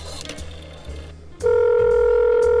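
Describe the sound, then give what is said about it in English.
A bar phone at the Art Dealer Bar is dialed with soft clicks and handling noise, then a loud, steady electronic ring tone sounds and holds to the end. “Hey, can you bring me the bar phone?”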